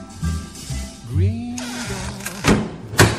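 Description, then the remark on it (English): A door creaks with a rising and falling groan, then shuts with two solid thuds in quick succession, fairly loud, with no talking over it. “We've closed the chat room door, but please tune in next time to Flame CCR on 1521 Medium Wave for more from Green Door Studios chat room.”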